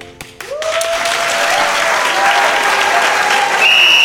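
A loud, sustained roar of crowd cheering and clapping in the stands at a game, rising after a few sharp knocks at the start, with a high whistle-like tone cutting in near the end.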